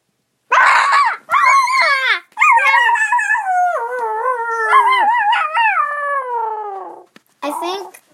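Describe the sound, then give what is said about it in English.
A dog yips in short, sharp bursts, then breaks into a long, wavering howl that rises and falls for several seconds before a final quick yelp. It is loud. “Your brother is attacking my dog!”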